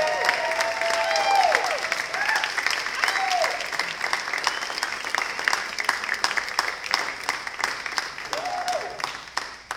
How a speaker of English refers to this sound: Can y'all give them a round of applause back here?